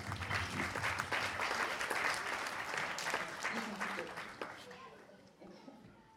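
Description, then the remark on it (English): An audience at a church service breaks into steady, dense applause for several seconds, the clapping gradually thinning and fading out near the end. “Can you give them an applause?”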